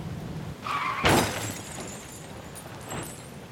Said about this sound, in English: The car careened over the side of the road and hit a tree.